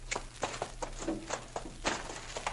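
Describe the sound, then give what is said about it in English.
The hooves of two horses, Maud and Bess, clip-clop and shuffle on a hard surface as the horses are fetched, an uneven run of sharp knocks with short scuffs between them, over a steady low hum. “Too much eating and no work ruins your horse sense.”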